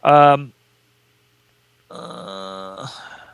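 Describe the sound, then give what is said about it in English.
A guard dog fighting Chiba in a film scene lets out a short, loud snarling yelp, falls silent for over a second, then gives a longer, strained growl that rises into a whimper. “Chiba fights a dog as like a boxer. They don't show the fight, though. You just hear it.”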